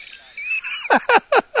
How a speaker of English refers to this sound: I just went to YouTube, typed in singing mice, and I got it.